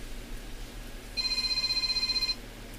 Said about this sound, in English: And so here we've got a phone ringing. I took care of it. Did you? Well, that's the first time I got a phone call over the microphone. I don't even know who it was.